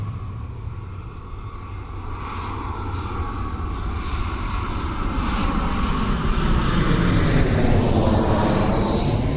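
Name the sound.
airplane engine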